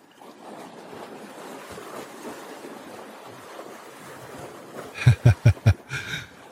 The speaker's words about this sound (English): Anyway, I decided to mix it up and add a little bit of sounds of water on the ocean as a boat goes through. Kind of appropriate for tonight.